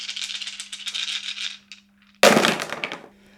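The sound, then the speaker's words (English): Six dice rattle in a cup for over a second of quick, clicky shaking, then after a brief pause spill out in a loud, clattering tumble that settles within about a second, rolled to generate two musical triads. No one speaks. “would you please roll six dice and generate those two triads?”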